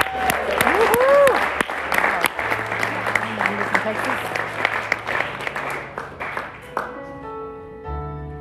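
An audience applauds a guest from Texas with dense, steady hand clapping for about seven seconds, with a few whistles and cheers over it, then the clapping fades as a sustained organ-like tone takes over.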